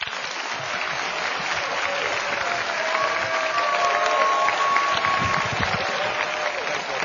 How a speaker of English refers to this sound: So if you give a warm round of applause, Mayor Gavin Newsom.